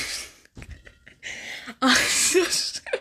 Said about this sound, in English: I'm sorry if I'm breathing very loud into the little audio recorder, right? Like the little microphone, right?